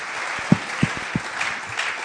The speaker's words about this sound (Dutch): Okay, thanks guys. Let's give them a hand. Laten we een applaus geven.